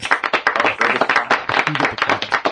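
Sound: hand clapping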